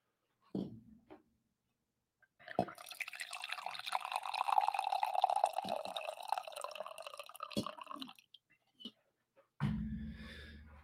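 Coffee pours steadily from a carafe into a cup for about five seconds, a bubbling liquid stream rising slightly in pitch as it fills, framed by brief clinks and handling sounds.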